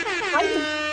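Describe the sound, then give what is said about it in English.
A single loud, blaring air horn blast, brassy and harmonically rich, held for just under a second with a slight wobble in pitch midway, alone with no talking. “And at that moment, we didn't have the air horn sound, but we have it right now.”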